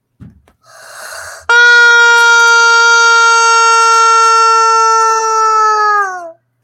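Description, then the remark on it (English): A rubber chicken squeezed once: a short breathy wheeze as air is drawn in, then one long, loud, nasal squawk held for several seconds before it sags and cuts off. “But how do you break a how does one break a rubber chicken?”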